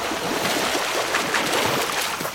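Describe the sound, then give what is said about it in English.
Steady, loud rush of a waterfall, a dense unbroken roar that stays constant from start to finish with no voices over it. “You're a dangerous waterfall.”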